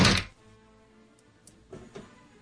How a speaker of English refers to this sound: I don't know why he like needs to just open and shut the door with his hand. He can use the Force.